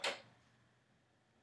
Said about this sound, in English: Gonna hear that door opening.